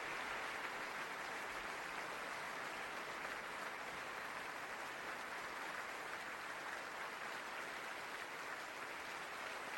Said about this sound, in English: Is very good, but they just sort of clap for ages, so we're gonna fade that out.